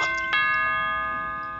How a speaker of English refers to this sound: I heard the doorbell ring, and I just look outside and I thought someone had maybe brought back our dog. But it was Raja herself who cleverly used her nose to ring the doorbell.